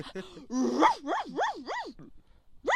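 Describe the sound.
A person imitates a dog barking at the mailman, with a rising yelp followed by several wavering, whining bark-like howls in quick rhythm, a short pause, then another yip.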